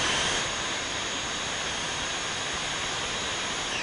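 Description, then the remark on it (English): A food processor pulverizing nuts runs continuously for a few seconds, giving a steady, loud, high-pitched whir with a hissy grinding edge and a faint motor whine, with no talking. “Now next I'm going to emulsify this by pouring in my oil as the machine is running.”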